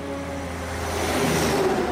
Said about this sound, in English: Oh, something's got to be done about those trucks.